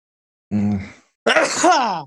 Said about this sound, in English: Got another sneeze coming.